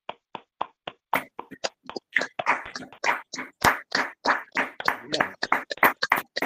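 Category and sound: crowd, audience applause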